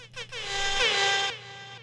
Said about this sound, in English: Just give her an air horn.